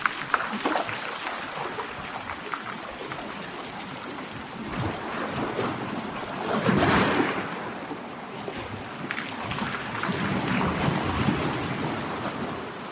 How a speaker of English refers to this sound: Waves are rolling in, relentlessly without a pause, as we carefully manoeuvre over slippery rocks. We listen to the sound of water washing over round pebbles, and pebbles rattling as the retrieving sea pulls them towards it.